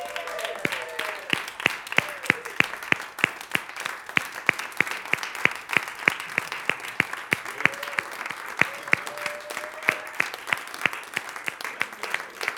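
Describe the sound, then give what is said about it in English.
An audience applauds steadily for the whole stretch, a dense wash of clapping, with one loud pair of hands, the speaker's own, clapping back at the audience in a quick, even rhythm above it and a faint voice or whoop underneath. “Woo, I'm clapping to you all too because we've been growing together.”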